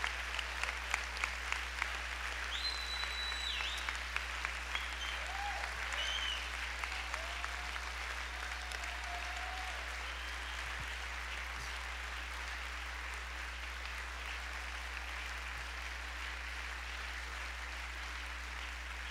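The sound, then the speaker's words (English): An audience at Victory Christian Center applauds two of the church's founders steadily for the full length, a dense, even wash of many hands clapping at a fairly low level, with a low hum running underneath and no voices standing out. “Come on, let's keep clapping our hands.”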